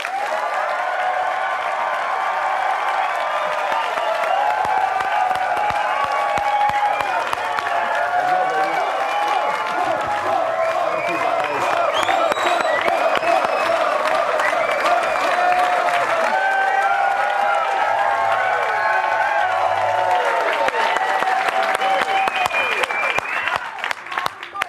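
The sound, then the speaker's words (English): A large crowd applauds steadily for about twenty-five seconds as BYU Cougars head coach Mark Pope is welcomed onto a show, loud dense clapping mixed with scattered whoops and shouted cheers rising over it throughout. “now we have time for applause, and it's just, we gotta go.”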